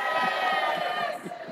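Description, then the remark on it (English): A crowd, cheering on cue after a count of three, lets out a loud, sustained cheer, many voices blending into a steady roar of shouts and whoops that holds for a second and a half. “So on three, would you please give us a cheer if you've tried it and loved it?”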